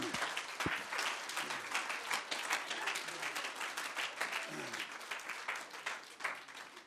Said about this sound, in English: Isn't God good? Let's clap our hands and give God praise.